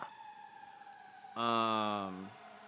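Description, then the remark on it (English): An emergency siren outside holds a steady wailing tone, then a loud, brassy horn blast cuts in for about a second before fading back to the siren. “More sirens!”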